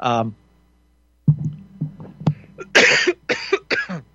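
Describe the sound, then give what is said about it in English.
A clear cough sequence: one short cough, a pause, then a few throat-clearing rasps leading into three strong, harsh coughs in quick succession. “excuse me, a cough.”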